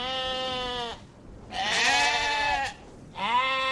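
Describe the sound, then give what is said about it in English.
Sheep on Ian Anderson's farm in the Montezuma Hills, where more than 3,000 sheep graze beneath wind turbines, bleating loudly: three drawn-out wavering baas separated by short pauses, with no voices present. “More than 3,000 sheep graze on Ian Anderson's farm.”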